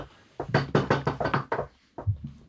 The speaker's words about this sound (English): No one in this room, everyone knock on wood right now.